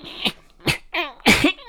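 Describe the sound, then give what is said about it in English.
Four short, harsh coughs in close succession, loud, the later ones rougher and more voiced, with brief pauses between them and no talking. “You have a bit of a cough there.”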